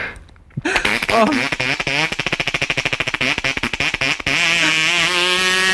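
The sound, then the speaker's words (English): A Homelite XL2 chainsaw with a 10-inch bar cranks and sputters to life with loud, rapid, uneven popping, then settles into a steady, buzzing two-stroke idle for the last second and a half. “So this is a home light XL2 with a 10-inch bar. It always takes two or three times to crank a home.”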